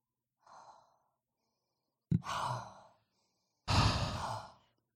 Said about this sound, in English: Just sniffing on a candle, everybody.